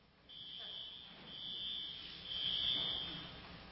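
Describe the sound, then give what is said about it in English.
A building fire alarm sounds, a shrill high-pitched electronic tone that keeps going with a few brief dropouts, with faint background murmur. “I think our alarm's going off.”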